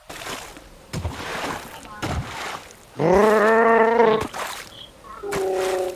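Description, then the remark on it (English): A voice makes a sustained, buzzing horn-like hoot imitating a boat, held for about a second, then a shorter repeat, amid bursts of lively chatter and rustling. “I'm making a boat noise.”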